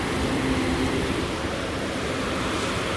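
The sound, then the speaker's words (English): Steady, dense hiss of heavy rain heard from inside a car, an even wash of noise without breaks, with a faint low hum underneath during the first second. No one speaks. “Oh, the rain's picking up.”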